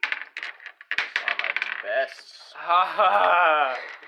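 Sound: dice being rolled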